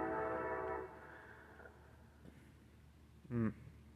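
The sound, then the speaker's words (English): A train horn sounds loudly in a sustained, layered blast for nearly a second, then rumbling fades into a steady low background drone, with a brief louder burst near the end. “Anyways, this train is really getting on my nerves in the background.”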